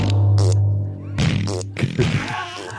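A loud, low, buzzing fart, made after putting talcum powder into the bottom and farting to the tune of a song, drones for nearly a second, then breaks into a few ragged, sputtering puffs of air, fairly forceful.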